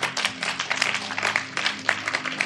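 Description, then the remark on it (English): An audience claps their hands for God in a dense, continuous burst of overlapping claps, fairly loud, with a low steady hum underneath throughout. “Oh, clap your hands for God.”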